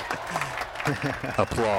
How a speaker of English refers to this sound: applause. You insert that. I'm the audio effects guy, so I like add applause, you know. Perfect. He's got the poet applause.